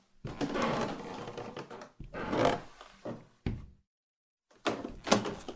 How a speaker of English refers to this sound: The tattered white door at the end of the hall opens to a staircase.